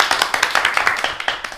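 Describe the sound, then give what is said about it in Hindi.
A quiz audience applauds Team D after a correct answer, a dense patter of overlapping claps, bright and fairly loud, holding a steady uneven rhythm throughout with no voices on top. “Team D के लिए तालियां।”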